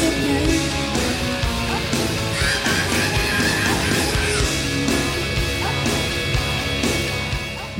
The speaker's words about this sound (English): features some awesome guitar solos and beautifully incomprehensible screaming